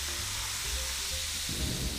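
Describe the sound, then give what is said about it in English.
Steady fizzing from soda in a glass, a dense bright crackle of bubbles that continues evenly for the whole stretch with a faint low rumble underneath and no voices. “I hear the sizzle.”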